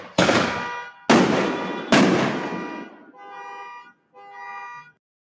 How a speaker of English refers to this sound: Here comes another firework. I see them fucking light.